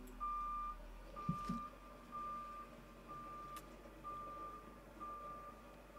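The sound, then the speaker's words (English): A truck's reversing alarm sounds about six steady, high-pitched beeps, roughly one per second, over a low rumbling engine, with a brief clunk early on. “Like a truck backing up. Beep, beep.”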